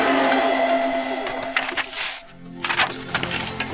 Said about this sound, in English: You get that paper shake in there